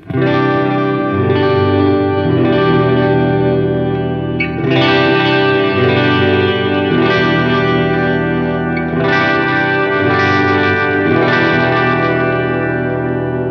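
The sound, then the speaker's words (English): Electric guitar on the bridge pickup, played through a Geneva amp sim directly into an audio interface, with dotted-eighth delay and Spurgeon Hall reverb, repeating notes cascading and washing into a continuous shimmering wash, steady and fairly loud with no voices. “And of course, since we are P-dubbing, dotted eighth delay and the Spurgeon Hall reverb.”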